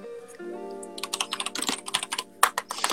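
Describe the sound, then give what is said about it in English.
Rapid, irregular clicking of keys being typed on a computer keyboard, fairly loud, with a steady low hum underneath and no talking. “Click-dick-dick-dick-dick-lacks. Yeah, I bet you miss your keyboard now you're away.”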